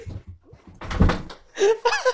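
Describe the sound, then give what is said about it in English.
A plastic chair leg buckles as a person sits down on it: a sudden hollow thunk and crunch, then a couple of short, strained creaks as the chair shifts, fairly loud. “Dude, I got so caught up in the t-shirt, I forgot I was standing over a plastic chair, and the second I sat down, I felt the leg almost kick out.”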